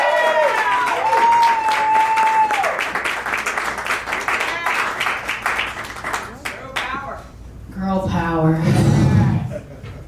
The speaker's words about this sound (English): Clap it up for her, guys.